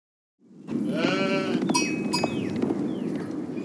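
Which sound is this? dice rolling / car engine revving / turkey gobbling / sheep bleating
sheep bleating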